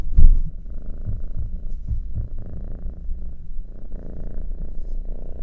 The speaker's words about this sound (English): my cat Monday just came over and sat on my lap where he's purring up a storm. I think he can sense that I'm just like giving the best vibes out right now talking about these candles because they truly make me happy. Here's Monday purring right now.